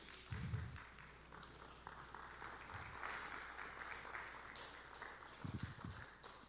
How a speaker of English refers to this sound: Come on, would you stand and give the Lord a good round of applause if you received it?